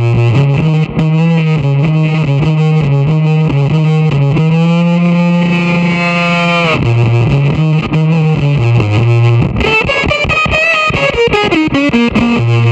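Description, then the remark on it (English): A loud, gated fuzz guitar plays a melodic line of held, buzzy notes drenched in reverb, with a pulsing tremolo chop toward the end, heard alone without any talking. “if you put like reverb and trem on and do like the … thing”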